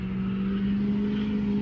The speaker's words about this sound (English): Car going by. That's another person driving by because they're fed up.